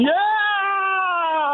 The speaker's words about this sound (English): Oh, my grandson's crying. He's got a fright.